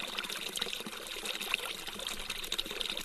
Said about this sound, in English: We had to hike out to it. Like there's some water coming out of the ground. Here we go.